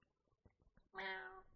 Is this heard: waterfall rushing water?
no